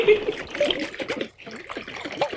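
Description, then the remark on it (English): Sugar water sloshing and splashing inside a jar being shaken, fairly loud, in irregular bursts with a brief lull partway through. “The more you shake, the more fun it is right now.”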